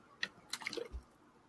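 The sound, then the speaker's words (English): A quick sip from a drink: a few soft, wet slurping clicks followed by a low gulp, quiet and brief with no talking. “Let me take a quick sip here.”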